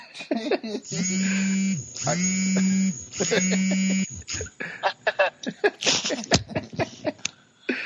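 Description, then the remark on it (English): A phone vibrating alarm gives three steady, low buzzing pulses of about a second each, separated by short gaps. Voices and laughter follow right after the buzzing stops. “Your phone on buzz? Oh, that was my my alarm.”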